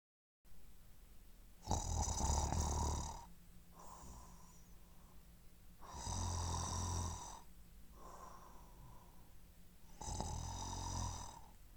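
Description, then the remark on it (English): Deep, rumbling snores from a bear sleeping in a cave come in a slow, steady rhythm: three loud rasping inhales, each followed by a softer, breathy exhale, with no talking. “Snoring in the shadows, someone's sleeping there.”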